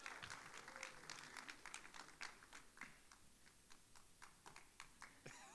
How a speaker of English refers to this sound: Some people want to keep clapping. It's like, this is awkward,